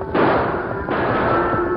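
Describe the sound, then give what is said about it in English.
Two sharp gunshot bursts from hard-riding men break through a loud, steady roar of stampeding longhorn cattle, the Bar J cattle, in the main street of Smith's Corners. The first comes just after the start and the second near the middle, with no voices. “Raging longhorns filled the main street of Smith's Corners, goaded to a frenzy of fear by hard-riding men whose guns filled the air with flying lead, driving everyone to cover.”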